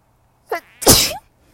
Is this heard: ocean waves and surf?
no